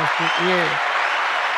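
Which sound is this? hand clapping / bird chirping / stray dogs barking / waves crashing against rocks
hand clapping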